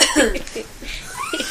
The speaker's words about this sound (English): Was the cough intentional?